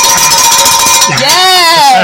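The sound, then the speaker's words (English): A bell clangs in quick repeated strokes, its bright, sustained metallic ring hanging over the hits, then fading as a voice with a rising and falling pitch takes over. “He get the bell one more time.”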